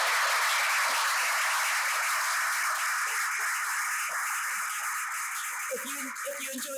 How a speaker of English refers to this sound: Thank you to all the panel, if you could all join me in giving them a round of applause.